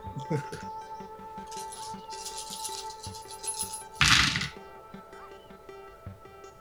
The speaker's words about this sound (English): so I rolled 1 6 on the ground and then another 6 that was on top of a 4 because there were so many dice.